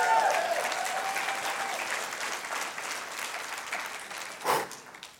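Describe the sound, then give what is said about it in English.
A church audience breaks into sustained applause, a victory clap for Jesus during a sermon, a dense wash of many hands clapping that holds steady for several seconds, with a brief voice at the start and a louder burst near the end. “Somebody give Jesus a victory clap.”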